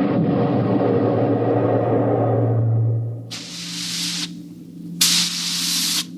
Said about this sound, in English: We could hear the desperate bursts of steam through the steering tubes as the Starfire maneuvered to dodge the enemy attacks.